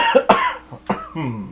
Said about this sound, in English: Sorry, I'm fighting off a cough